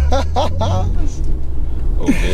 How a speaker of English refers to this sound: Oh, sorry, bus. The car behind me is gonna hit me.